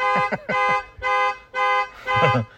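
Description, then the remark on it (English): The car alarm of Rich Fowler's vehicle at a trapping convention blares in loud, repeated electronic bursts while his wife tries to turn it off, about four or five pulses of rich buzzy tone with short gaps between them and a slight wavering pitch on some blasts. “Rich, your wife's having trouble turning off her car.”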